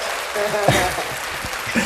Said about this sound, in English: But yo, throw the little applause in there.